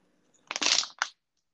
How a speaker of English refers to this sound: Oh, that's a water bottle. Was it the first episode I annoyed you with it? Remember that? Yeah. I thought that was your noises of drinking water.